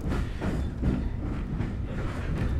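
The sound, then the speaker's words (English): A steady low rumble of a heritage steam train carriage rolling along the track, pulled by BR Class 9F locomotive number 92212 as it moves slowly out of Ropley towards Medstead and Four Marks, with faint rhythmic clatter from the wheels, heard from inside at a constant, fairly loud level. “we're slowly moving out of Ropley on our journey up to Medstead and Four Marks, pulled by BR Class 9F 2100 number 92212.”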